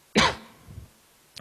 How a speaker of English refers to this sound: I didn't really cough. It's just a joke. Don't take it too seriously.